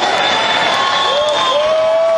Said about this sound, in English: Look at the video screen. Yeah, that's cool. And they're showing the people in the crowd jumping up and down and screaming and yelling for more. That's the first time I've seen them do that.